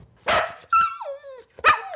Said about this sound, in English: Okay, well, now she's barking about something. But what really is she saying?